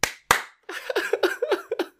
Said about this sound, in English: give me two claps and a Ric Flair.